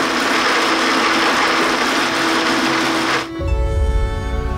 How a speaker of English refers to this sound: Activating blender.